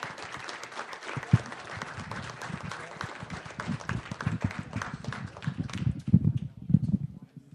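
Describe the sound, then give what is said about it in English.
An audience applauds a panel steadily for several seconds, dense overlapping claps forming a broad wash of sound with a few louder sharp claps near the end. “Thank you all for being here, and please give the panel another round of applause.”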